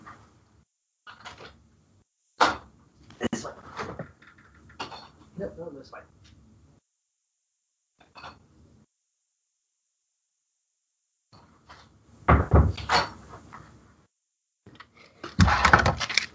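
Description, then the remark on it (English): An office door is opened to let a dog out: scattered clicks and knocks of a latch and handle, a pause, then louder bursts of wood thumping and rattling as the door swings and shuts. “I'm in the office with the door shut. The dog was sleeping in here, but then he woke up and decided, I want out.”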